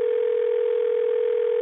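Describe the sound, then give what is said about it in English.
A steady, unbroken telephone dial tone on a burner phone hums at an even level for under two seconds, clear with no voices over it, before a call is placed. “Somebody text me the burner phone that Bizarro Steph Curry has, and I'm about to call Bizarro and find out what's going on.”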